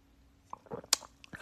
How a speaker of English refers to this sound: I'm sipping a mimosa right now. I love mimosas. Do y'all like mimosas? I actually like them a lot. I'm sipping a mimosa, and I wish I was sipping it to celebrate, but unfortunately, I'm not.